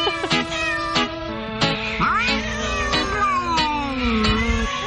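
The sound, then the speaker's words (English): Several cats meow and caterwaul together in a loud, overlapping chorus of long, wavering yowls punctuated by sharp clicks, continuous throughout with no talking. “That's why you have cats from all countries.”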